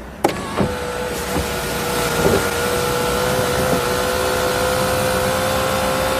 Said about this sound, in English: Just listen to all these little servo motors. Mm-hmm. I'll turn the ignition on. What is that noise? Listen to the servos. Marvellous feat of engineering. It's almost like music itself. Listen.